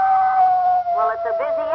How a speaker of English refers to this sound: Now, that was the male, or the buck wolf.